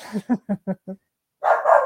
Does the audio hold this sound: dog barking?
yes